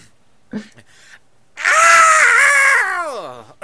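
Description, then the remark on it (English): A person loudly imitates a blood-curdling scream, sustained for about two seconds before the pitch sags and trails off, after a moment of faint rustling. “But he wakes up before with the blood-curdling scream. Can we give our best Jesse scream here?”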